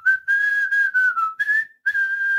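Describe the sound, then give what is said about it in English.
Someone whistles a steady, fairly high tone in a few short held phrases with brief breaks between them, clear, with no talking. “By whistling.”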